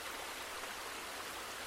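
river flowing

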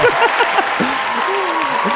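crowd cheering

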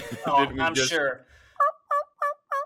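wild turkey gobbling

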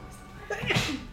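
sneeze

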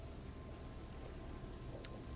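rain falling

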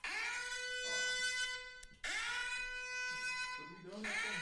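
alarm ringing

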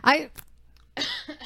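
cough

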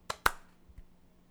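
hand claps

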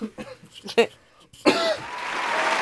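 applause

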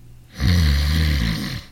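loud snoring

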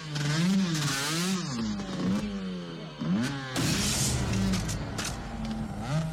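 motorcycle engine revving

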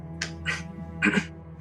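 cough

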